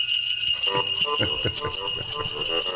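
A bouncy Christmas novelty song plays, bright jingle bells shimmering steadily on top of a rhythmic, upbeat backing, loud and continuous throughout.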